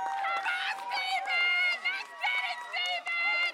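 Several voices cheer and shout together close by, loud overlapping yells rising and falling in bursts for a few seconds without a break, like a small group urging someone on.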